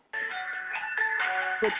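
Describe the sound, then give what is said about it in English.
A cell phone rings with a bright electronic melody, its tones shifting every fraction of a second, steady for a couple of seconds with no one speaking. “Somebody's got a cell phone they need to.”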